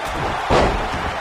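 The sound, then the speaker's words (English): A single heavy slam booms out midway, a deep full-bodied impact as John Cena knocks The Rock down onto the mat, over a steady noisy background with no talking. “Cena knocks down the Rock once again.”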